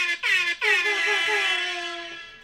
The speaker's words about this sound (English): Oh wait, but let me get my air horn. Hold on. Air horn.